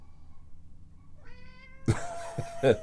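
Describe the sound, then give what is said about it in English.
A cat gives a short, rising meow followed by a couple of louder, rougher meows in quick succession, with no one speaking. “I can't wait for these four cats to die, and then maybe we'll get some cooler cats.”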